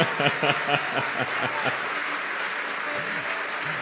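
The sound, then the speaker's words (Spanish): An audience at a worship gathering claps for God in a dense, sustained burst of applause, loud, with a few stronger rhythmic claps at the start before it settles into a steady roar of hands. “Hey, aplaude como si tuvieras ganas, dale.”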